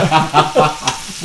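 Pork belly sizzles in a frying pan, a steady crackling hiss with bursts of louder spitting and popping, heard alone without any talking.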